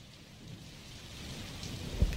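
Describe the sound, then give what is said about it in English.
Steady rainfall hisses throughout a thunderstorm, with low rolling thunder underneath and a sharper, louder thunder burst near the end. No one speaks. “Oh, I heard the storm.”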